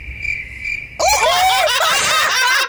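cricket chirping sound effect

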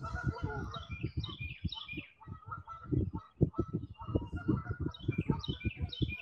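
geese honking

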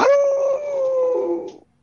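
wolf howl sound effect

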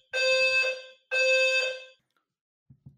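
fire alarm going off

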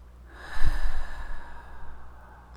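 deep audible breathing

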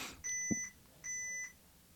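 electronic beeping

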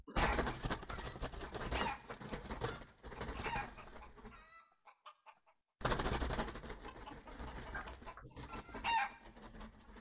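chicken clucking

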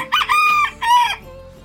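rooster crowing

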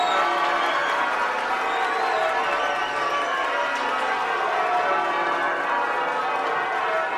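crowd cheering

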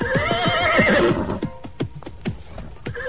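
horse neighing

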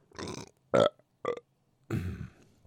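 burp

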